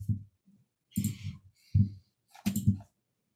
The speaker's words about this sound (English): Let's just roll the dice as they are here. All right.